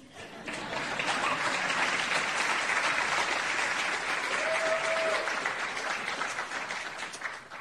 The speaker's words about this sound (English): You can clap for that.